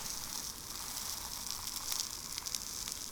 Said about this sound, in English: The happy little families cheer you on as you burn ants. Listen to their guts pop.